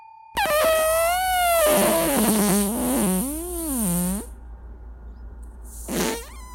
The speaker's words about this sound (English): Sorry. All right, I got my own fart. He's playing extended farts.